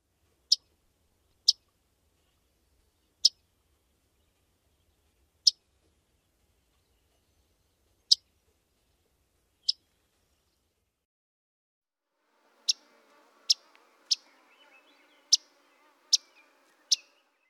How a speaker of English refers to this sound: One last time, yellow-rumped warbler call notes, some Audubons and some Myrtles.